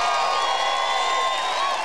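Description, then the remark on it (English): A large rally crowd cheers in a steady, unbroken roar, many voices blending into a loud, bright wash of whoops and shouts that holds at the same level throughout. “Did you hear the reception that he got for that?”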